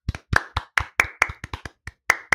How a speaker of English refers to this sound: A round of applause for them, please.